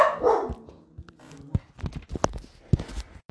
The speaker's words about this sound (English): That was my dogs again, trying to get him part of this podcast.